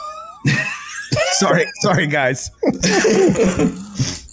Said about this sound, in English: Oh. Bless you.